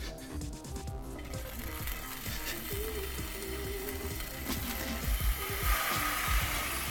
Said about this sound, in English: Let's hit the frying pan. The frying pan. It's just a little light little fry, just to heat them up, you know? You want cold hot dogs.